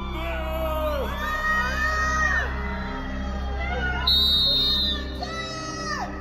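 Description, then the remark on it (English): A crowd of Depp fans outside the Virginia courthouse shouting and heckling Amber and her witnesses, with many overlapping raised voices, whoops and yells forming a continuous loud din, one sharp high-pitched shout rising above the rest midway. “Heckling Amber and her witnesses.”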